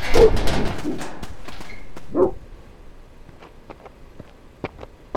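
Off-leash dogs that ran off bark in a loud flurry at the start, followed by one more bark and then quieter scattered snaps and taps, with no one speaking.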